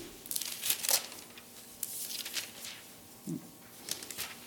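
Thin pages of a Bible being turned back to Ezekiel chapter 16, with several crisp rustles and crinkles in uneven bursts, fairly quiet, with no talking.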